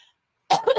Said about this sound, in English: Loud cough for you at the very end. If you have headphones on, I'm so sorry because my coughs are loud. I usually mute, but I didn't care this time.